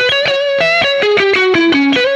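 A fuzzy, sustained electric guitar line played through a Pete Cornish Soft Sustain G2 pedal, a descending run of single notes, each one thick, saturated and ringing with smooth distortion, loud with no talking.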